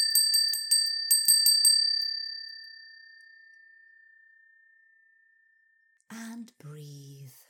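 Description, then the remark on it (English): A hand bell is shaken in a quick flurry of about ten bright strikes, then left to ring out in a long, slowly fading tone before a voice begins speaking. “please ring your bell.”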